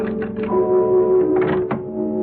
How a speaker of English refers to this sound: And then I heard it. A key was being inserted in the lock. And I could hear it turn.